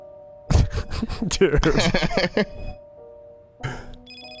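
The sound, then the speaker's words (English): A telephone rings in a phone booth in a Nike video, with a steady electronic tone, partly covered by a burst of loud, busy, voice-like noise before the ringing comes through more clearly near the end. “It's in a phone booth.”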